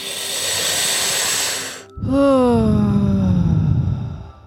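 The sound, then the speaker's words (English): An airy hiss of breath drawn in through pursed lips like sipping from a straw for about two seconds, then a long voiced exhale that slides downward in pitch like a sigh, made during a guided breathing exercise. “And so just consistently inhaling with that sipping through a straw sound, and then exhaling with a sound.”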